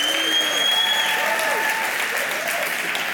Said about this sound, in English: I love it. But more than just an applause, which I love, what's inside of you tonight?